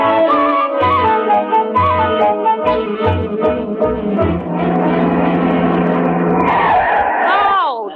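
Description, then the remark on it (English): Brakes of a car in need of brake repair squeal loudly as tires skid for several seconds, a harsh, wavering screech that bends downward in pitch as the vehicle slides to a stop. “Got to get them brakes fixed.”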